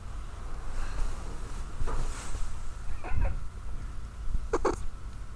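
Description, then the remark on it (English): A kitten meows a few times, in short separate calls spaced over several seconds, at moderate volume, over a steady low background hum, with no talking. “Want to be part of the podcast?”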